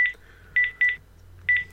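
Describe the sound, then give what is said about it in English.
Quick electronic keypad tones from an iPhone as a phone number is dialed, four short beeps in an irregular rhythm, clear with no voices. “So if I'm in my iPhone stroke watch again, so I'm putting my number again.”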